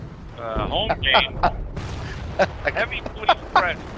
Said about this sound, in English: I can hear the explosions behind you. Sounds like a mess.